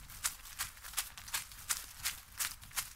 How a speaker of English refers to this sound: We sat there listening. We didn't see anything. But we soon heard the sound of footsteps running through the grass towards us.